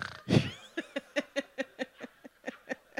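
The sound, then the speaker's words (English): A woman imitates her own loud snore with one rough, full-on snort, like an exaggerated snore. A quick, steady run of short, breathy bursts follows, sounding like laughter. “I look over and I was like, and it wasn't a quiet snore. It was like a full-on.”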